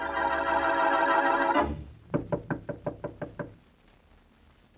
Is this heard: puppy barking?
no